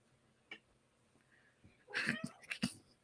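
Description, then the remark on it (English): A cat named River lets out a short meow made of a few quick, rough bursts, preceded by a faint brief sound and some quiet background. “Who meowed?”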